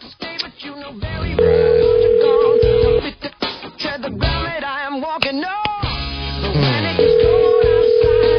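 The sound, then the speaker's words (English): A phone call to a contest winner ringing out over a line: two long, steady ringback tones separated by a pause filled with muffled, tinny background sounds, all fairly loud and narrow like a telephone connection. “Ooh, we're going to call”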